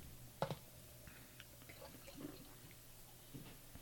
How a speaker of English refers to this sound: There we go. Wow. That's got a nice head on it. Yeah, that poured out a nice, foamy, tan head. But maybe not so tan. I can't really see from over here. It's definitely got some roast barley in there. Yeah, it's got enough tan to make it a stout.